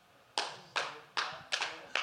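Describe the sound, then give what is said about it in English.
A slow, deliberate clap: five crisp hand claps spaced evenly about every half second, each a sharp smack that fades quickly, with no voices. “Slow clap, okay.”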